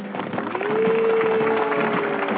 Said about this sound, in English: We get a live applause. Look at that. And we are once again live on the Stupid Cancer Show, the voice of young adults with cancer.